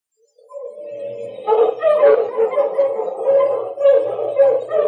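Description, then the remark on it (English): A pack of sled dogs, about ready to start for Peel River, barks and yips together in a busy, overlapping chorus that rises quickly and stays loud and steady, with a few higher howl-like cries mixed in. “Well, Tracy, the dog sleds are about ready to start for Peel River.”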